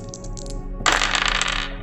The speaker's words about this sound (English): Okay, I've rolled a 14, so that will be bumped up to the minimum of 16, plus 4, is 20 hit points.